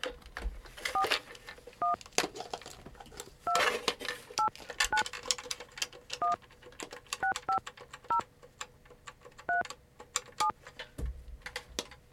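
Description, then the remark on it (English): Telephone keypad tones beep one after another, about eleven presses at an uneven pace, each short and clear, with faint clicks and background noise between them and no talking. “So, I don't know where I was going to go with that, but it's the bat phone.”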